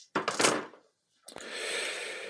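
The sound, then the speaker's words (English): A large handful of dice, rolled for an awareness plus wits check in a role-playing game, rattle sharply in a cupped hand for about half a second, then after a brief pause clatter and tumble across a surface in a sustained, rolling jangle. “Let me know if I'm hitting the mic when I shake my dice like this.”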